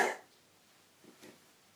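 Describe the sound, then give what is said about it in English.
A single sharp cough, given on request, bursts out right at the start, fairly loud, then fades into near silence broken only by a couple of faint, soft rustles. “Cough, please.”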